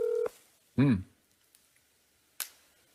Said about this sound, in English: We call? Okay, we are calling.